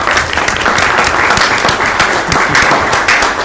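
A steady round of applause from a group for the employee of the month, many hands clapping densely and continuously at an even, fairly loud level for a few seconds with no talking.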